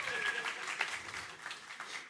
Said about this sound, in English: So thank you to that panel and all the work they did last week. Cue applause. There it is.